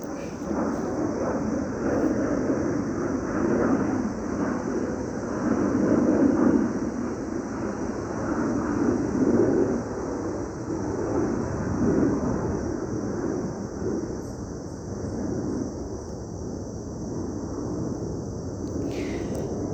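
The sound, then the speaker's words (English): A steady, broad roar of an airplane passing overhead, heard at a point on a nature trail, fills the whole stretch, holding a constant loudness with a rushing, windy edge and no breaks. “It's another airplane. Airplanes forever and ever.”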